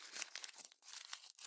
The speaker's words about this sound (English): He's going to pull out the piece of paper and kind of read through again. Just kind of crumple it up and just toss it.